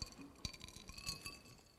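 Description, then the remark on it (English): A glass of water set down on a table with a soft clink, followed by a few light knocks and scrapes, fairly quiet with faint ringing tones. “I need to bring my water over here.”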